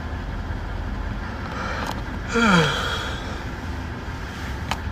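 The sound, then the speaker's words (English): A single drawn-out yawn rises briefly over a steady rumble of wind or engine noise, its voiced tone sliding downward before fading after about half a second. “Yawning.”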